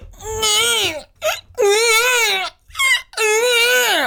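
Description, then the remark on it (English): A person imitates a baby crying, letting out three long, wavering wails with short hiccuping sobs between them, loud and high-pitched with a strained, nasal quality. “can you give me the best... baby noise, baby crying noise.”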